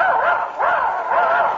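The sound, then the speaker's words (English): A voice imitates a dog, giving three quick, loud barking yips in a steady rhythm, each one rising and falling in pitch, with nothing else behind them. “Now he thinks he's a dog.”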